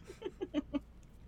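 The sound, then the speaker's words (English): Pigeons outside a window coo in a quick run of five soft, throaty pulses, evenly spaced and fairly quiet, with no talking over them. “Yeah, I talk to my pigeons outside my windows, and I just like really look forward to them being around.”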